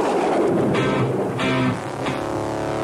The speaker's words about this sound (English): of a rumble of thunder, which was our top of the hour ID at 1 o'clock a.m. when I came on and I pronounced that I was going to provide thunder on the mountain from Reno's best rock.